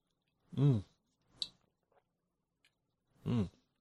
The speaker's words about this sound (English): I got a monster right here. I'm going to take a drink of it. I got a sip of a monster.